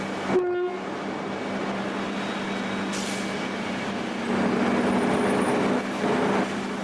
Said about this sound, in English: Just 200 kilometres south of Townsville, wagon after wagon full of coal rolls along the train tracks to the deepwater harbour at Abbott Point.